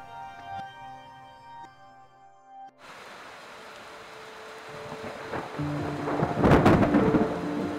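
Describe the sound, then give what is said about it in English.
A few seconds of steady tones give way to heavy rain hissing loudly in a jungle lightning storm from a hurricane that hit the state of Oaxaca, then a crack of thunder booms and rumbles through the downpour near the end. “A byproduct of a hurricane that just hit the state of Oaxaca, this lightning storm was fierce.”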